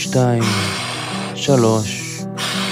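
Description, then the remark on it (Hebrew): A forceful breath pushed out through the mouth during a guided breathing exercise, a loud, airy rush. A second breathy burst follows about a second later, with a humming tone underneath. “וסט 13, 1, להוציא,”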